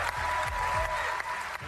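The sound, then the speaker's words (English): A crowd at a school board meeting in Jacksonville, Florida, gives a standing ovation: sustained, dense applause, a steady wash of many hands clapping at an even, full volume throughout. “And she got a standing ovation. The applause went on and on and on.”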